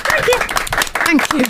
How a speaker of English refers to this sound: You see, I think we've been doing this long enough now that we should have an automated response there, that we should have a huge round of applause or a marching band or something.